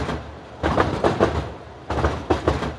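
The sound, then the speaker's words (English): An Uptown C subway train rumbles steadily with a low, droning hum, broken by loud, rhythmic clattering bursts as the wheels pass over track joints. “Sometimes I find myself nodding along to like the rhythmic hum of the Uptown C train.”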